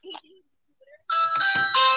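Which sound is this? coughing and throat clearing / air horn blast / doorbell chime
doorbell chime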